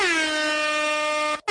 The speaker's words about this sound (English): I had to get you an air horn.